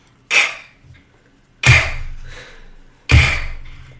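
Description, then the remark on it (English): Three slow, heavy footsteps on a wooden rafter, each a loud thudding knock with a short ringing tail, spaced evenly about a second and a half apart, with no voices. “It was the sound of his great-great-great-grandfather's footsteps.”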